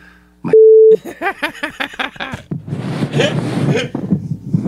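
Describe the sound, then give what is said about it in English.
A single loud, steady censor beep lasting about half a second, followed by a rhythmic run of voiced chuckling or speech and then a stretch of busy, noisy talking. “This one I had to beep a bit.”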